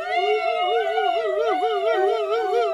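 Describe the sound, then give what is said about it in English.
Several voices imitate a police car siren as loudly as they can, a sustained wailing tone that wavers up and down in pitch with bright harmonics, loud and steady throughout with the voices blending together. “And three, as loud as you can, be a police car.”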